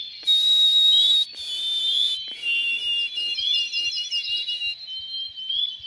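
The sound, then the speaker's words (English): A white-throated sparrow sings clear, high whistled notes: a long steady tone, then a run of shorter wavering repeated phrases, prominent over a soft hissing background, heard at sunrise at the edge of a lake in the Northwoods. “They're from white-throated sparrows.”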